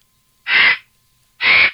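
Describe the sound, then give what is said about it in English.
A bird gives two loud, harsh, raspy calls, each lasting under half a second, separated by a brief pause of silence. No one speaks. “It's a bird.”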